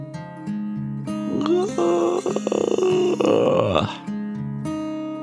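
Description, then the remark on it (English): A single drawn-out yawn performed by a narrator for the story character Fran, rising and then sliding down at the end, fairly loud over a soft, steady musical background. “Fran yawned too.”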